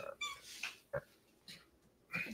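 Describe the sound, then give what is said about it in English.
A female cat gives several short, high-pitched meows in quick succession, moderately loud, with brief pauses between the calls and no talking over them. “Gosh, cat.”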